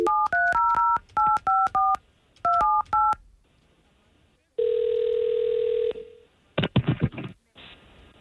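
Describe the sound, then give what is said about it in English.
A quick run of telephone keypad tones as a phone number is dialed to call someone, about a dozen dual-pitch beeps in bursts, followed by a steady ringback tone and then a brief ring, all clear with no talking. “Okay, well, we're going to take the phone number that you gave us and we're going to try to give him a call and see if we can't get the both of you talking, okay?”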